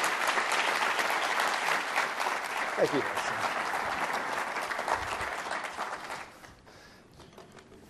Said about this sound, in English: So everybody, please give a warm round of applause for ….